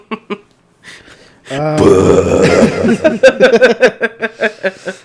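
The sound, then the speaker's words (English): A loud, rumbling burp into a microphone after a drink of water lasts about a second, followed right away by a burst of rhythmic chuckling; short voice sounds come before it. “I just took a drink of water. Yeah, and then you burped into the mic.”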